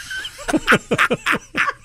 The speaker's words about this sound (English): Oh, listen to that. That's an actual howl from Sasquatch there. Oh, yeah. This thing. On a plastic green toy. Yeah, which, no, it's a recorded